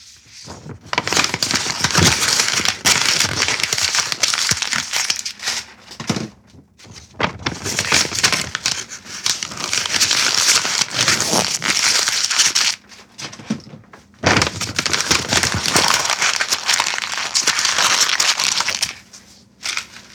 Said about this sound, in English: Next on the list, several sheets of paper being crushed. Several sheets of paper being crushed.